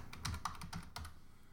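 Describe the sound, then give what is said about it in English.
Rapid typing of "Radio Free Mormon" into a search engine on a computer keyboard: a quick run of about seven or eight crisp key clicks in an uneven rhythm, fading to quiet near the end. No one speaks. “I'm going to type in Radio Free Mormon into my search engine.”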